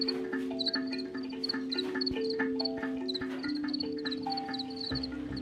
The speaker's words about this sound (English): Everyone has some sort of positive association with the sound of cricket singing.